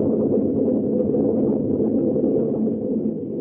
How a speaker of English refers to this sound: Ah, there. There, we saw the lightning then. Now we know that thunder is coming.